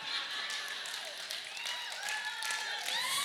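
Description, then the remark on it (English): A crowd claps steadily and fairly loudly for a few seconds, the dense patter holding even throughout, with scattered cheers and whoops rising over the applause. “Wait. Don't applaud yet.”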